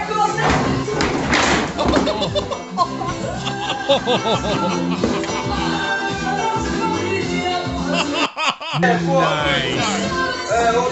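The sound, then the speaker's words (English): A heavy thud of a drunk person toppling off a chair, set against loud overlapping voices and lively crowd chatter that carries on throughout. “Off the chair.”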